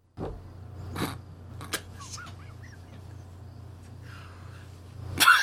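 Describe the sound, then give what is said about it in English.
A steady low hum with a few faint clicks and chirps runs through as a clean room noise sample is recorded for a noise filter, then a fart breaks in near the end as a short, loud, raspy burst. “I say, let's get our clean room noise sample for the filter, and you fart.”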